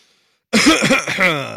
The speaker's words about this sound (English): Got to get those coughs out of the way.